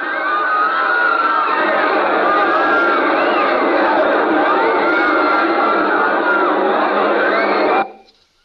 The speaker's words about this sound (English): I heard the terrified roar of thousands of throats, and I knew it was death.